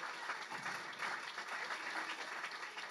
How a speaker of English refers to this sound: Hey, we talked about rounds of applause. We got to hit it up for her.